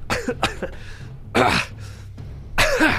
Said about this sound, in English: And as you've experienced that, you look around and you see someone that's in it just coughing.